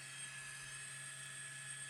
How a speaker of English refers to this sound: And then we did a helicopter adventure over the volcano. Super sick. All right. I'll show you some of the footy here. Can you see that?